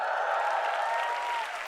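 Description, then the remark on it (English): An audience claps steadily, a dense, even wash of hands that holds for under two seconds with no voices over it, dipping slightly at the very end. “But before you clap too loudly, okay, and you wow too much, do you know her medical bill?”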